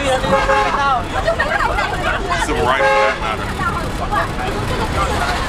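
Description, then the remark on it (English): Crowded bus interior in downtown Mingho, heard from the back of the bus, with many overlapping voices chattering, a steady hum of traffic beneath, and a car horn tooting briefly while someone talks. “I'm sitting in the back of the bus.”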